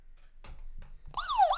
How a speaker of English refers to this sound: And it's going to be Joe Flacco. So sound the damn alarm real quick.